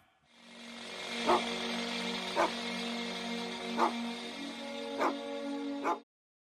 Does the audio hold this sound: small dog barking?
yes